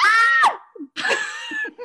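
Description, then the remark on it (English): A voice imitates a high-pitched scream in two loud, strained bursts, each wavering and breaking off, with a short breathy gap between them. “That was the fucking scream, and we were all like, "What the fuck was that shit?"”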